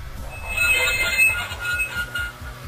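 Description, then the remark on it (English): Loud, continuous metal-on-metal scraping: a piercing high squeal with shifting screechy tones over a rough grinding noise and a steady, pulsing low rumble, with no voices. “At number 4, another scraping sound, this time metal on metal.”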